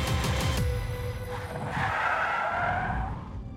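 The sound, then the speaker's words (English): A van brakes hard and its tires skid, a loud engine rumble giving way to a sustained, rising screech of rubber on pavement that lasts a few seconds before easing off. “He slammed on the brakes and turned the van around.”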